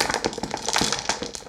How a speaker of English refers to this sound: So anyway, you've got your dice, ready for some dice ASMR.